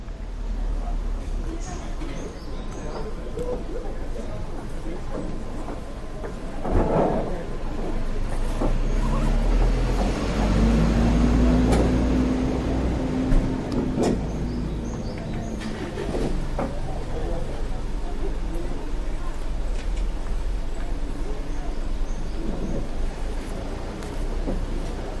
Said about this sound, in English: See, now this is more my speed. This is more, you can hear some birds, you can hear some people kind of chit-chatting, but nothing crazy. Yeah, that is really nice. It gives you the kind of, sidewalk cafe in Paris kind of feel.